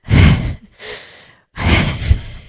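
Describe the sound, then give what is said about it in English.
Heavy, close breathing right against the microphone: three loud breaths, each a broad rushing burst of air, with a quieter one in the middle and a brief pause before the last. “The breathing in the microphone is the best part.”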